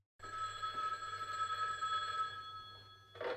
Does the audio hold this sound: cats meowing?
no